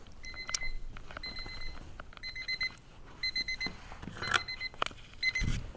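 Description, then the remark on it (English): A timer alarm rings in repeated bursts of rapid high-pitched electronic beeps, pulsing steadily over several seconds, with faint background noise and rustling underneath and no speech. “I have a timer so I don't go over. And then you can't find the fucking timer.”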